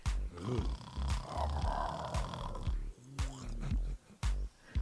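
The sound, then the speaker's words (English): Someone does a loud, exaggerated snoring imitation: raspy, growling snorts that rumble on for several seconds, then break into a few shorter snorting bursts near the end. “So either real fine and you snoring like a damn bear.”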